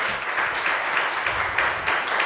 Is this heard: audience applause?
yes